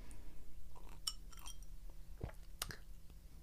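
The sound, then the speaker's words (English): Drinking glasses clink together in a toast, a few bright ringing taps, with a couple of softer knocks and quiet background noise around them and no talking. “I still want to cheer. We always cheers. I'll die if we don't cheers.”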